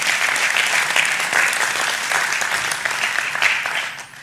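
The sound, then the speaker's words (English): An audience claps steadily for everyone who was baptized after 8 baptisms, a dense, sustained burst of applause, loud and even throughout before tapering slightly at the end. No voices stand out. “Can everyone give another round of applause for everyone who's baptized?”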